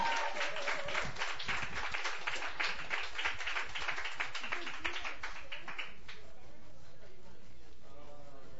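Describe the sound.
An audience bursts into steady, dense applause that lasts about six seconds, then quickly dies away as a voice begins speaking.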